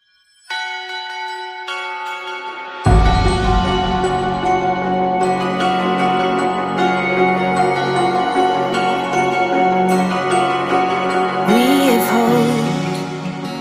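A Christmas song intro opens on sustained, shimmering bell tones, then a full band with deep bass swells in after a few seconds, loud and steady, with no voices.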